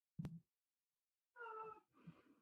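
A brief thump, then a pause, then a cat lets out a clear, drawn-out meow, followed by a softer, rougher follow-up sound. No one speaks.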